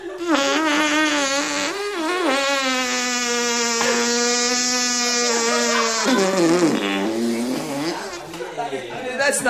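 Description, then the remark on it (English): A voice imitates a long, buzzy fart: a sustained raspy tone that wavers in pitch for several seconds, then drops lower and breaks into sputtering noise at the end. “That's not human. Eyes without a face. Fart without a butt.”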